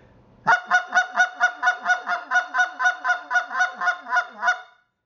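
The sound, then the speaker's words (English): A rapid run of about sixteen sharp, even fast clucks blown on a goose call, loud, in a steady quick rhythm with no talking. “Once we get to this point where we can cluck and get the fast cluck, I'm going to start working on the hand position.”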